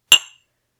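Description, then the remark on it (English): A single bright, sharp clink of glasses of Japanese-style pilsner beer touching in a toast, with a short ringing tail that fades quickly into silence. “Let's try it. Cheers.”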